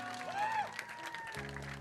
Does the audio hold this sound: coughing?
no